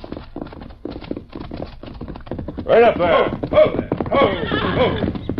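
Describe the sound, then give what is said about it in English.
Horse hooves clip-clop in a steady rhythm as a rider comes along a trail, then a horse whinnies loudly and repeatedly over the hoofbeats, while a man says a few words. “Get off that horse.”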